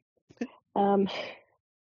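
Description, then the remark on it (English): A child coughs in another room: a quick sharp catch, then a longer voiced, raspy hack that trails off into breathy noise. It sounds slightly muffled. “I can just hear my other kid coughing.”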